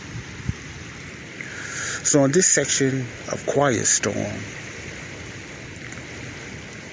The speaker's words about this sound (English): I'm just going to let God's natural water speak for Himself. The natural lake here in Chicago. I don't know how well you hear the sounds and the currents and the small waves in the water, But it's quiet right now in downtown.